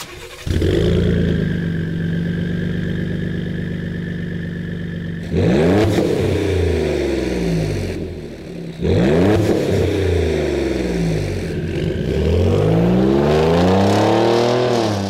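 A 2017–2020 Ford Raptor's EcoBoost twin-turbo V6 with a Borla Attack aftermarket exhaust idles with a deep rumble, then revs hard three times, each rising and falling pitch sweep loud and raspy, with no talking.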